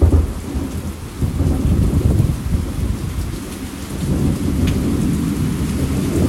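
Deep rolling thunder rumbles continuously through steady rain, the low booming swelling and easing over several seconds while a constant hiss of falling water fills the background. No voices are heard.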